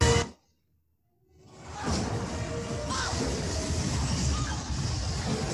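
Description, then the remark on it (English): A loud crash breaks off into a brief silence, followed by a long, steady stretch of rough, noisy banging as a woman holding a child repeatedly body-slams a door, with no voices. “She's like body slamming the door with the kid in her arms, you know, over and over again.”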